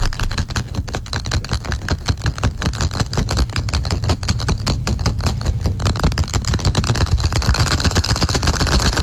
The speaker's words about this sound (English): It is golf balls being shook in a container.